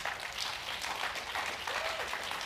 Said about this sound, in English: They clapped, so it's time to come.